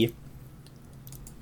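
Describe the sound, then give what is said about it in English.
Soft, scattered clicks of computer keyboard typing and mouse clicking, a handful of quick taps spread irregularly over a quiet, low background hum, fairly faint. “If you're hearing clicking right now, that's exactly what I'm doing.”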